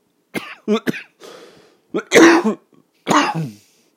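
A series of loud coughs in irregular bursts, with a couple of short throat-clearing sounds mixed in, heard alone without any talking.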